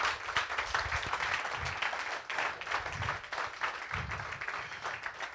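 A large church audience applauds steadily during a morning service, dense overlapping claps filling the space in a sustained, fairly loud wash of clapping with no voices standing out.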